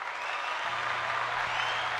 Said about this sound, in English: Crowd roars.